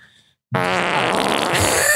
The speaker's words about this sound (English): You pretty much took the wind out of my sails. And the farts out of your butt.